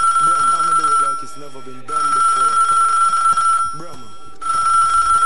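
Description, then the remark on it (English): A telephone line rings loudly with an incoming call in three long, steady bursts separated by short pauses, while a man talks over the first part of the ringing. “Somebody else dip on my phone line.”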